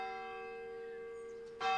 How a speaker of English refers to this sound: It was New Year's Eve, and the church clock was striking 12.